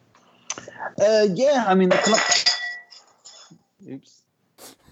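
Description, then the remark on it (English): A glass is accidentally broken, shattering with sharp, ringing clinks, followed by a few scattered tinkles of pieces settling, while a voice cries out over the crash. “Just broke a glass.”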